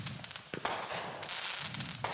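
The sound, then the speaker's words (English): A firework cake crackles densely and continuously, a hissing shower of rapid tiny pops punctuated by a few sharper, louder bursts, with no voices. “It does seem like every cake's got crackle in it.”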